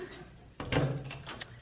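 A back door in the country opens after a moment of quiet: a sudden latch clunk, a brief rush of movement, then a few sharp creaks and clicks as it swings.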